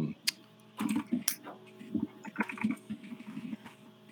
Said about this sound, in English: You're typing essays in here, man. What are you doing?